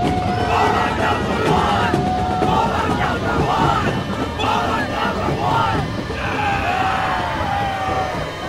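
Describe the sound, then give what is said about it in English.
A large crowd gathering at night murmurs and chatters continuously, a dense wash of overlapping voices with occasional louder calls and whoops rising above the steady babble. “Let's go to camera two and show everyone the crowd gathering here tonight.”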